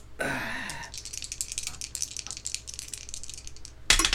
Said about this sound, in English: All right, let's roll some dice.